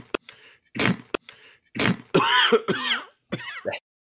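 A recorded coughing sound effect played on a radio show to cut off a speaker: a string of loud coughs and throat-clearing bursts, some harsh and raspy, with a few wheezy, strained gasps between them, heard alone without speech.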